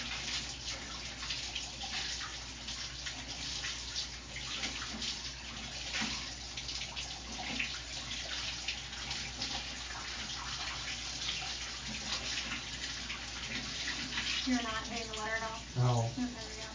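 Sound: running tap water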